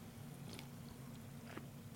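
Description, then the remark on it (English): A sip of a new apple-flavored drink that smells like Honeycrisp: two short, soft slurping mouth sounds about a second apart, set against a steady low background hum, with no talking. “I'm gonna get a sip of this.”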